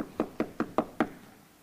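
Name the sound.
knocking on a door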